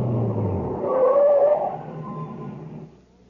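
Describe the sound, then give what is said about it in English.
A heavy truck rumbles, gives a short high brake squeal as it slows, then its engine noise fades down to near quiet as it comes to a stop by a reactor equipment building. “No, stop here, by the reactor equipment building. What for? Just stop the truck.”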